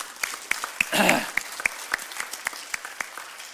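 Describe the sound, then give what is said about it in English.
Congregation applause for people joining the church: a scattering of sharp hand claps in an irregular rhythm, swelling briefly into a denser burst of clapping before thinning back to separate claps. “But let's give them some applause.”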